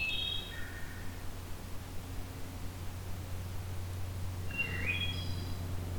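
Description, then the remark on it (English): A black-throated green warbler sings short, high, buzzy phrases, one at the start and another near the end, over a steady low hum and hiss with no talking, in coniferous woods of mostly white cedar with some pine and spruce near Hamilton, southern Ontario. “And so, turns out black-throated green warbler is here at the moment.”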